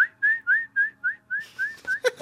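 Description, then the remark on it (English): A bird-like call resembling a bobwhite, whistled as a quick, steady series of about nine short rising notes, clear, with some hissy rustling noise creeping in toward the end. “Is that a, is that tweeting? Is that a yeah, car I'm tweeting there. Like a Bob White?”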